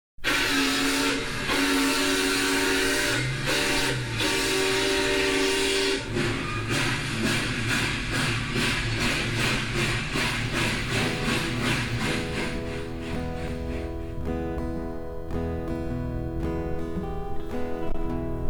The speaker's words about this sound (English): Hear that train a-coming down past Cumberland Road. I hear that train a-coming down past Cumberland Road.